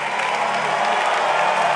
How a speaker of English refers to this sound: Oh, somebody clap your hands for the Lord.